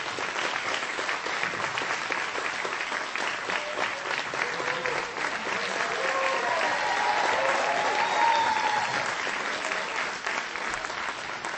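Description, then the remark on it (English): Sustained applause from an audience giving God a hand clap of praise, a dense wash of clapping that holds steady and swells slightly toward the end, with faint cheering voices mixed in. “Give God a hand clap of praise. Oh, come on, you can be better than that.”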